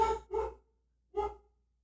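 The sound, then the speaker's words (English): A female husky barks three times in quick succession, two close together and then one after a short pause, loud with no other sounds around it. “And, oh my God, my husky is losing her goddamn mind.”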